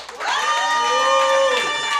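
A crowd cheers loudly with clapping mixed in, a dense, steady wash of raised, whooping voices that holds for about two seconds.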